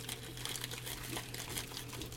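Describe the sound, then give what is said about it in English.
Continuous crinkling and rustling of thin plastic zipper baggies being handled, with a steady low hum underneath and no talking. “I got these little baggies. And then I usually put it in a second baggie.”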